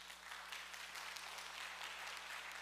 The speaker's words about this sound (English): Let us encourage them with a round of applause.